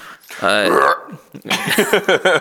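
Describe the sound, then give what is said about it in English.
A deep, drawn-out burp after drinking a fizzy drink rumbles into the microphone for about half a second, followed by someone talking briskly. “Meanwhile, I'm trying to not burp down the microphone.”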